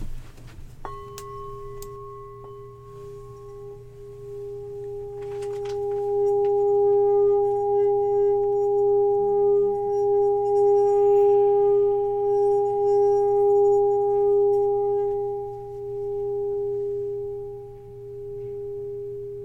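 A bell is struck once and rings out with a long, steady sustained tone and clear overtones, humming on for many seconds before slowly fading, with no voices.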